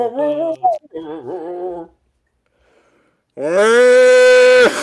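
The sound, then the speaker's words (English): A cow lows in a few drawn-out, wavering calls, then after a short pause lets out one very loud, sustained moo close by. “Holy Jesus, that cow's right next to us.”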